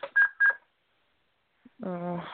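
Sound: telephone call being dialed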